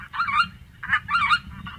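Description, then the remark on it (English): Several geese honk and cackle overhead in quick, overlapping bursts, their harsh calls coming in clusters, with a low rumbling background underneath. “So if you hear some Canada geese or snow geese overhead, and hear a different laugh or high-pitched yelp among the honks and cackles, there are probably a few white-fronted geese mixed in with the flock.”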